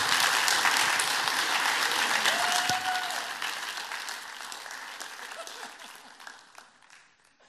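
A crowd keeps applauding as a speaker is welcomed up, with dense, steady clapping that holds for a few seconds, then gradually thins and fades toward the end; a brief whistle cuts through partway.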